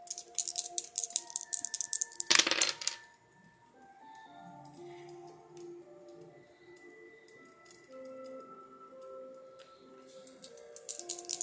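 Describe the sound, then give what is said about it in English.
Dice rattle steadily in a cup for a couple of seconds, then tumble out with a sharp clattering burst, followed by soft tinkling music playing on its own. “Let's roll the dice and find out what's blocking your heart's desires.”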